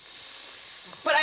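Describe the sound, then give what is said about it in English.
A steady, breathy hiss from a voice mimicking a hissing radiator in New York, running for about a second before a sharper, brighter burst of sound cuts in at the end. “So like sometimes it's the radiator, and other time you're like, what's that hissing?”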